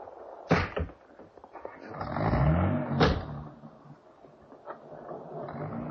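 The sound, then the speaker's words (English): A car door thumps shut twice, with a mechanical rattle in between, as an engine starts up and revs, then the car pulls away with a low rumble. “Get back in the car, darling.”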